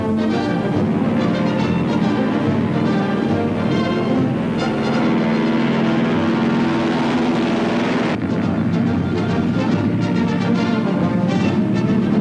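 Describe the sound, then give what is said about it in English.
Loud, steady drone of giant C-47 transport plane engines taking off towing troop gliders, a continuous rumbling roar that holds its level throughout with a slight shift in tone partway through. No voices. “Giant C-47 transports, towing troop gliders, demonstrate how a single plane can hurl three times as many fighting men against the enemy.”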